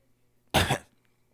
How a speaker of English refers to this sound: Like, that cough was unnecessary.